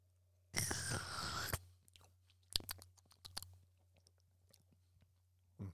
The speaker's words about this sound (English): I'm gonna give it a sip. You ready? I'm going in.